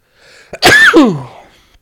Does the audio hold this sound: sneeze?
yes